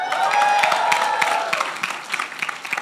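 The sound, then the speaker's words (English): A crowd cheers and applauds loudly in response to a call to make some noise if God has changed their life, with sustained high whoops and whistles over dense clapping that gradually thins out toward the end. “These people that are cheering, that could be you.”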